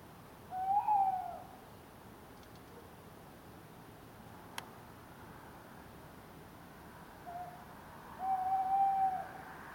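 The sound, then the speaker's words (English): A male tawny owl hoots twice at night in a garden, a long wavering call at the start and another near the end, over a soft background hiss. “On Monday night, I recorded this sound of a male tawny owl.”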